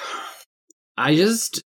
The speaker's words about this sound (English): Immediately doing a big yawn after I start the timer.